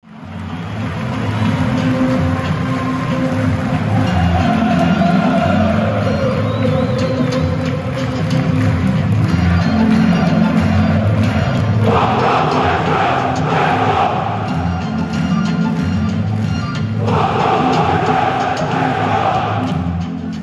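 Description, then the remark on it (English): A large crowd of Wolves and West Brom football fans in a stadium chants together in a dense, continuous roar of voices, singing either "Fuck off, West Brom, we're Wolves" or "Fuck off, Wanderers, West Brom" at the same time, with louder rhythmic surges of the chant swelling up twice toward the end. “less of an illusion, Dave, is more of just a lovely audio mix of those fans”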